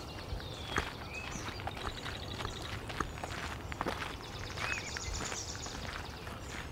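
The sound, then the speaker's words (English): Steady footsteps crunch along a path through a marsh, a regular walking rhythm of soft thuds and rustles, while several birds chirp and whistle throughout in the background. “Let's head down this path through the marsh here.”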